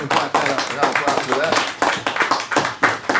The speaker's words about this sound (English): No, we got to clap for that.